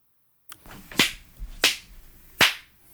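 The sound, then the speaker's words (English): Three sharp hand claps land at uneven intervals, each a crisp, bright smack with a quick decay, preceded by a fainter tap and with no voices. “God, I feel like these are weak claps.”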